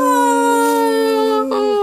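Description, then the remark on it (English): A dog lets out one long, loud howl, holding a steady pitch before it wavers and dips briefly near the end. No one speaks. “Cue the dog running.”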